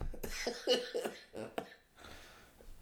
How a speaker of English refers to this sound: Sorry, I just had a coughing fit there.